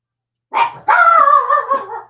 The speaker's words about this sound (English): damn dogs. Hush.